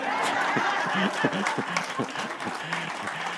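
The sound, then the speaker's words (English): At a church service where a pastor is preaching, a crowd applauds steadily with dense, continuous clapping, while scattered voices and a few chuckles rise over the noise throughout. “You really want to clap after this.”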